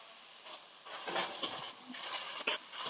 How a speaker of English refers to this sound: Like you might have to mute your mic. A lot of water in the background.